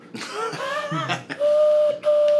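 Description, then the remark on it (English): A voice imitates a train whistle: a few wavering, rising hoots, then two long, steady, fairly high tones separated by a brief break, sounding loud and sustained. “What sound is that? What is that? Owl. Or a choo-choo train.”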